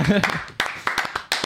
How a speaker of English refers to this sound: But this is episode 10 of Hump Day Replay. Huge. Yeah. Definitely worth celebrating. Yeah. I'm proud of it. So yeah, let's clap it before we even see it.